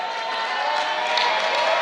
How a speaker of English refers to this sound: So good. It's exciting. There's a lot of... Everyone's clapping a lot. It's good.